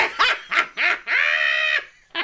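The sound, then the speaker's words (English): An old English bulldog barks at around 4 a.m.: three quick, hoarse barks, then a long drawn-out yowling bark, and the start of another. No one speaks. “Neighbors reported hearing the old English bulldog named Biggie Smalls barking at around 4 a.m.”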